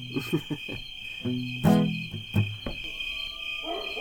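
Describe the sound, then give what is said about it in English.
Coyotes in the hills yip and howl in bursts of wavering, harmonic cries, with a few thin gliding wails toward the end, all over a steady, high-pitched chirring of crickets. “Oh, it's coyotes. That's what it is.”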